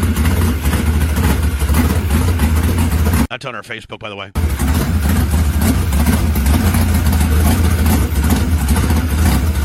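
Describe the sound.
A loud, throbbing race car engine roars and revs up close, its rumble dense and steady, briefly cut off by a short spoken line before the engine noise resumes.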